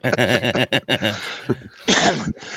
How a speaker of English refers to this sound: Excuse me, guys, for coughing in your ear, but.